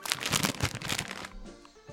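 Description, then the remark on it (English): A packet of turkey stuffing flavoured crisps is pulled open with a burst of loud, sharp crinkling and crackling for about a second, then the rustle fades to a faint, quieter shuffle. “I'm opening the bag.”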